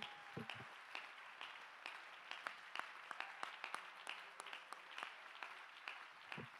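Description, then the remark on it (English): An audience claps hands in praise to the Lord, a steady patter of many overlapping claps with sharper individual hits standing out, moderately loud and continuous for several seconds with no talking. “Let's give the Lord a hand clap of praise here just for a few seconds.”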